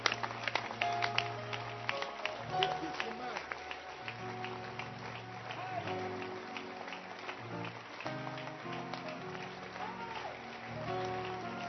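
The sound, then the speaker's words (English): An audience claps continuously, many hands producing a dense, steady patter of sharp overlapping claps, with deep sustained musical notes droning underneath throughout. “The teacher, keep clapping.”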